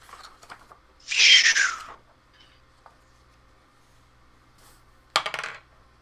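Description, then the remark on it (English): Dice clatter across a table in a loud, rattling burst about a second long, then a shorter, sharper clatter follows a few seconds later, with quiet between and no talking. The dice land on a 1. “Ooh, a 1 on the dice.”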